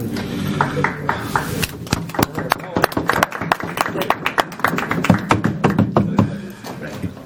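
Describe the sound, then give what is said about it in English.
A group of people clapping in quick, uneven bursts of sharp claps that run for several seconds, with voices talking and murmuring underneath. “Stop clapping.”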